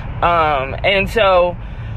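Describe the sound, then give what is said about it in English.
A steady low rumble of a car cabin while driving to work in traffic, road and engine noise droning throughout, with a person speaking briefly over it. “But today I'm a lot better and on my way to work, as always, up in the car in traffic.”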